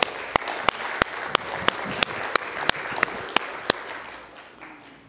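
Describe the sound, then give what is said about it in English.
An audience at a church service claps its hands for the Lord, a dense wash of applause with one sharp, steady clap cutting through in a quick even beat, then the crowd's clapping thins out and fades. “Let's give the Lord another hand clap, please.”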